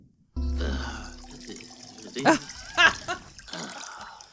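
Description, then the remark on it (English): A steady stream of urine splashes into water as a man pisses in the old Bleach Creek, starting abruptly and running continuously, with a couple of louder bursts of sound partway through. “It's … pissing in the old Bleach Creek.”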